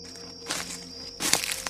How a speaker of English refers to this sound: I heard another footstep, this time much closer. It was clear someone or something was sneaking around our campsite.